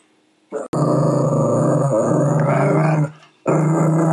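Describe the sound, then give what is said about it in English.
A puppy named Penny Lane growls loudly in long, rumbling stretches: a short grunt, a sustained growl lasting a few seconds, a brief pause, then the growl starts again. “Oh my stars, that's my puppy.”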